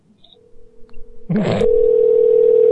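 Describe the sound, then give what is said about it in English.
A telephone dial tone: after a faint hum and a brief burst of clicking noise, a steady, loud, unbroken mid-pitched tone sets in and holds without a break to the end. “Call him back, because I think we accidentally got disconnected.”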